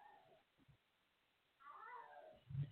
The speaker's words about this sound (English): One of my cats has this thing about just meowing loud. He's okay.